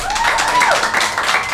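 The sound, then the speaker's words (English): An audience breaks into steady applause, a dense wash of many hands clapping at once, loud and sustained for the whole moment with a faint voice rising briefly underneath. “Everybody, round of applause”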